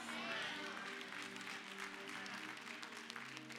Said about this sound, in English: I knew the claps would get lower, so I just want to bust your bubble early in the sermon instead of later.